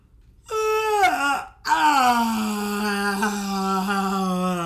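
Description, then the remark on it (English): A person lets out a loud, drawn-out, exaggerated yawn, its pitch sliding downward, briefly catching, then stretching into a long sustained groan, clear with no talking. “What does a yawn, what does a suspendable yawn sound like?”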